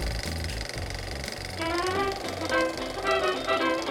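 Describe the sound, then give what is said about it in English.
An old squeaky projector, wheeled out and switched on, rattles into motion with a rapid mechanical clatter and low rumble, then wavering high-pitched squealing tones rise over the steady whirring mechanism. “All right, now just wheel out this old squeaky projector and I'll just hit the switch here.”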